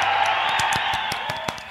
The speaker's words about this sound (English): Golf clap.